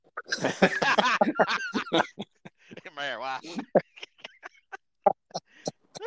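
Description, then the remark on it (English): A chicken laying eggs clucks in a busy run of short, choppy calls, with a longer drawn-out squawk midway before the clucks thin into scattered single notes. “God damn chicken laying eggs there. Got chickens everywhere.”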